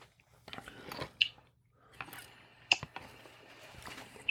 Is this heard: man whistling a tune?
no